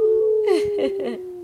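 A voice imitates a coyote howling in the distance: a sustained, steady wailing tone held for over a second, broken by a few brief breathy, whimpering bursts partway through.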